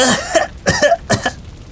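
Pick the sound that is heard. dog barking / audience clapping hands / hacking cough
hacking cough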